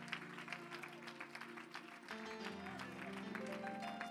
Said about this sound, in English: Someone clap your hands unto the Lord. Give him some great praise.